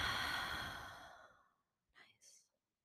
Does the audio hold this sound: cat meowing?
no